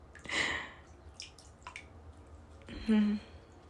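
Quiet water in a bathtub: a few drips and soft splashy sloshes come in short bursts, with a brief hollow plunk near the end, over a faint background hiss.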